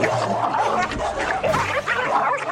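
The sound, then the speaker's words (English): A stray pit bull and a dog named Jax scuffle in an alley, snarling and growling in a loud, continuous tangle of harsh, overlapping noise for a few seconds, with no talking. “The two dogs have a brief scuffle in the alley.”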